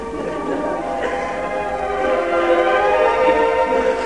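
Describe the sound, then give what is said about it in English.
A train whistle blows in a long, sustained, harmonic-rich tone, swelling slightly louder toward the end, with the rumble of the train underneath. “Oh, whistle.”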